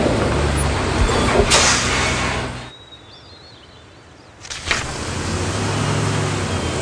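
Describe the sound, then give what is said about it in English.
A large school bus rumbles, its engine loud and steady, with a sharp hiss of air brakes, a brief high squeal, then another burst of hissing as it idles. “I even got to the school bus on time.”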